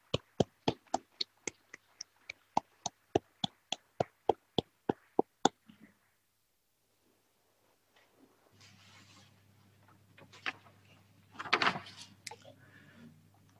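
Brief, sparse applause of steady, evenly spaced claps, close and crisp, fading out after about six seconds into a quiet room with faint hum and a few shuffling noises.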